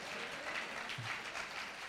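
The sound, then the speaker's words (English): An audience claps for Jesus together, a dense, steady wash of many hands that stays fairly loud and even throughout, with no voices rising above it. “Clap for Jesus right now.”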